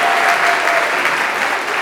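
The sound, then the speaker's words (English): The audience at a school kindergarten end-of-year program claps steadily for surviving kindergarten, a dense, continuous wash of applause that stays loud and even for the whole stretch, with no voices rising above it. “So give yourselves a round of applause for surviving kindergarten this year.”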